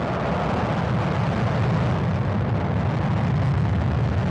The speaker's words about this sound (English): The launch command has been issued. And with that, we see the fires lit, the engines start to roar, and lift off.